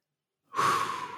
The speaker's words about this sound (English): As I just took a big deep breath.